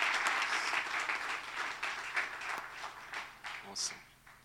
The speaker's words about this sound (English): Let's just give the Lord a round of applause as well.